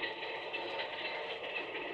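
A steady, continuous rumble and hiss like riding inside a moving train carriage, even and unbroken throughout, with no voices and no distinct clacks standing out.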